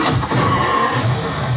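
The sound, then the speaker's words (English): In a movie scene where a car is driven off a plane and crushes other cars, a car engine roars loudly, revving hard while tires skid with a brief high squeal, all in a dense, continuous wash of noisy sound. “riding a car off of a plane. Wow. He just smushed a bunch of other cars.”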